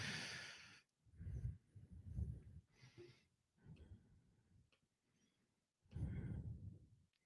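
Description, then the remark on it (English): Several short, raspy throat-clearing bursts, a cluster early on, then a quieter stretch of breathy noises before one last strong rasp. No talking. “Sorry, I keep clearing my throat.”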